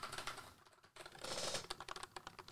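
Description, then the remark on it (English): Rapid typing on a wireless Bluetooth computer keyboard, a dense stream of crisp, fairly soft key clicks, with a brief pause before a flurry of quicker presses and no voices. “Not loud at all. He's like clicking pretty hard.”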